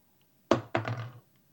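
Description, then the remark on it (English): A toy figure is dropped from about a keyboard's length high onto a desk, landing with a solid thunk, then a quick second knock as it bounces, and a low hollow ring that fades within about half a second. No one speaks. “You want me to drop him?”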